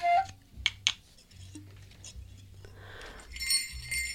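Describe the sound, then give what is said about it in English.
A small glass box lying on the floor clinks twice in quick succession, bright and clear, followed by soft rustling and a faint tinkling shimmer near the end. No one speaks. “A little glass box. Just lying here on the floor.”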